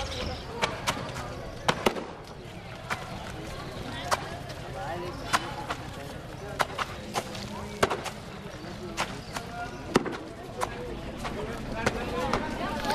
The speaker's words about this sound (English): She's just standing there now, looking at the washerwoman. Maybe she likes getting sprayed a little from the wet clothes banging up against the stone slabs.